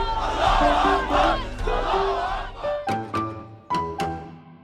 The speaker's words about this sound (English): Okay, I'm in Tahrir Square, which is the biggest central square of Cairo. Mubarak deposed. Egypt's 18-day revolution defies all expectation. Moments ago, the crowd just exploded into cheering and flag-waving and chanting the word freedom.